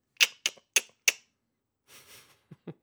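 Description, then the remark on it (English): A person imitates a spider noise with four sharp, evenly spaced mouth clicks, followed by a soft breathy hiss and a few low, short thuds. “That's my spider noise.”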